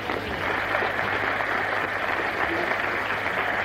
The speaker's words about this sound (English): Look at this. Give her a clap. Come on, give her a clap.